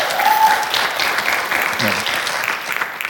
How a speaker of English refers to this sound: You guys know what a blessing they are, and I'm so proud of them. They deserve a round of applause, man.